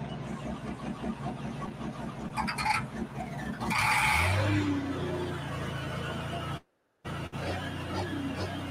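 A big pulling tractor engine roars loudly, its pitch climbing as it revs at startup, then settles into a steady heavy rumble as it drives on the track amid outdoor crowd noise on a Saturday night at Lufkin, broken by a brief dropout.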